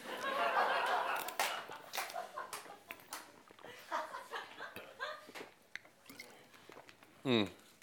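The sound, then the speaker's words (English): A speaker sips water during a Bible reading: wet mouth clicks, slurps and swallows in an uneven run, ending with a short, louder voiced exhale after drinking. “Let's take a sip of water.”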